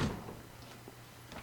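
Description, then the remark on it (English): A door on a set slams shut with a heavy, booming thud right at the start, shaking the whole wall, followed by faint rattling and low rumbling as the sound dies away; no one speaks. “When he shut the door, the whole wall shook, really giving away the fact that it was a set.”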